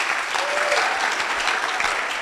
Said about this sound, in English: Clap your hands for Brother Moses.